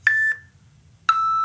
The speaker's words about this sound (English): and you'll have 1 minute to answer each question, and we have a little beeping machine that will tell you when your time is up.